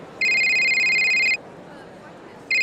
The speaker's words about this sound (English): 15 minutes before the opening night, I'm getting ready backstage when my phone rings.